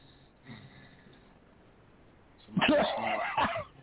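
A man snores with one faint, low breath early on, then a single loud, rasping snore lasting about a second before it cuts off.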